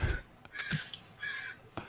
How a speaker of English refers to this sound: So sorry, my window's open and there are crows. That's funny. Wow, they're crows angry. Going nuts.